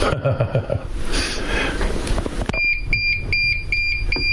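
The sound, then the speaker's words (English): A timer alarm for bread on an Echo smart speaker starts partway through, sounding a steady run of bright, repeating electronic beeps in quick rhythm. Before it, there is muffled voice and room noise. “there is the timer for the bread. Timer. Timer canceled on …'s Echo.”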